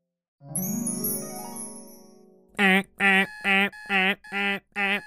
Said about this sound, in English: It was 4:30 a.m. and Alabaster Zero's alarm clock was going off at the start of a brand new day